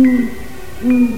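owl hooting

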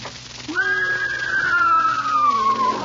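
horse whinnying

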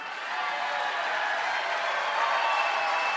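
crowd cheering

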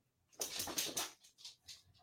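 dog barking

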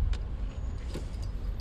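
car driving in traffic

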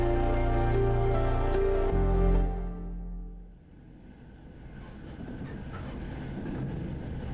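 train running on rails

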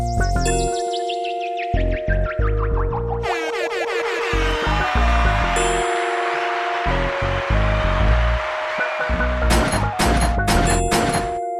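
gunshots sound effect

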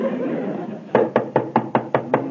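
knocking on a door

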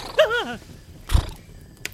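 horse neighing

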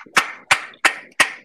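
people clapping

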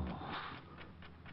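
clock ticking

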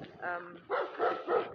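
large dog barking

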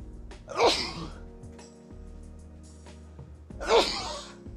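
sneeze

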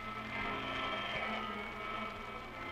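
vacuum cleaner running

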